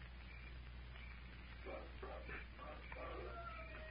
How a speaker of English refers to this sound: There it is. Wolf howl.